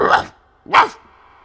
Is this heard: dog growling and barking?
yes